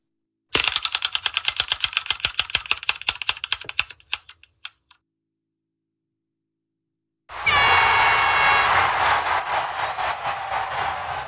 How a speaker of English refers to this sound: As you know, there'll be a massive siren at the end of this, and I don't know how to turn it down.